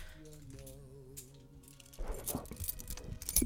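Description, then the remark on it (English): Keys jangle in a few quick, bright metallic bursts during the second half, following a stretch of steady humming tones with no jingling. “Can you hand me those keys over there?”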